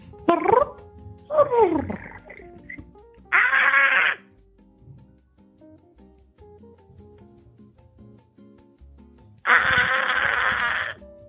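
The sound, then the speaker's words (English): A voice makes the noise of their clown character, resembling a gecko call: two quick falling chirps, then two loud, raspy, buzzing bursts, the last held for over a second, with quiet gaps between. “Ain't that the sound the gecko make?”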